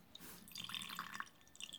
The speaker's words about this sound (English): Actually, that wasn't a sound effect, ladies and gentlemen. That was real rakia being poured into a real glass. The crystal glass, really. The crystal glass, no less, yes.